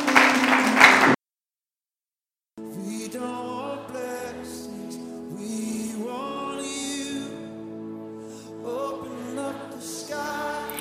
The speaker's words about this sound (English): Why don't you clap for Jesus?